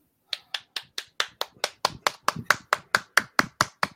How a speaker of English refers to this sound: Wow. That was me clapping for you.